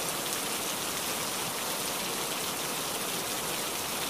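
Steady rain falls without pause, a dense, even hiss of countless drops spread across the whole range, holding a constant level throughout with no voices.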